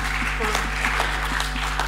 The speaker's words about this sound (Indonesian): Oke, okay, boleh kasih tepuk tangan, saudara.